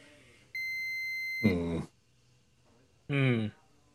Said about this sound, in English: I'm going to call him back again. I'll call him again. Phone rings.